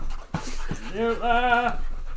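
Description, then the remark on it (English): A dog, Henry or Gracie, pants and lets out a high, wavering whimper that rises and falls for about a second, with a short sharp breath or yip near the start; the dogs are wet and full of snow. “Alright, well, that was Henry and my sister's dog, Gracie, everybody.”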